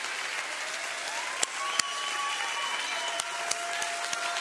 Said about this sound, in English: You know what we ought to do? We ought to give him a hand clap of appreciation because of what he's done for us.